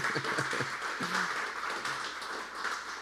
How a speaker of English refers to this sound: We can clap for that. That's good stuff.